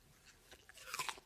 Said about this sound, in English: Oh, well done. Chewing as well.